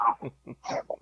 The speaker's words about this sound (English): There's the dog already. There's the dog already.